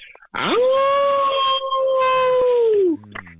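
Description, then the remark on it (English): A single loud, sustained wolf-like howl rises sharply, holds a steady pitch for over two seconds, then drops away, with a brief fainter sound trailing at the end. “You probably guessed wolf, but it's really howl.”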